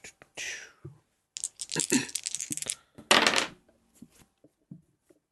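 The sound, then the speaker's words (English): Several dice clatter and tumble across a table in a few quick bursts, with a louder rattling cluster near the end before they settle, fairly quiet. “Oh, wait. I rolled the wrong dice.”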